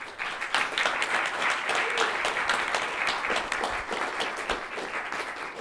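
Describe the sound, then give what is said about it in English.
A crowd applauds the panelists at the end of a panel discussion, with many hands clapping in a dense, even wash of sound that stays strong for several seconds without any talking. “But please join me in a round of applause for the panelists.”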